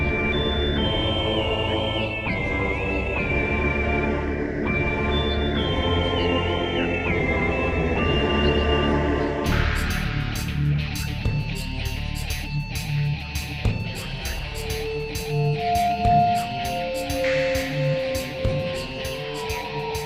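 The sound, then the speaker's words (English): Metroid Prime 2 title screen music opens with sustained, layered choir voices, then shifts about halfway into a busier, pulsing texture as the Metroid Prime whistle melody plays the main theme, with an electric guitar riff and percussion. “The choir is immediately inviting, and then you hear that iconic Metroid Prime whistle play the main theme for Prime 2, and then it pumps you up for some action with that electric guitar riff and some appropriate percussion.”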